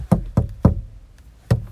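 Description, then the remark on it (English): Sharp tapping on a window, three quick raps in a steady rhythm, a short pause, then one more. The taps are fairly loud, with no voices. “But the scene off that was when the young vampire came knocking at his mate's window, and it was like a tap on the window.”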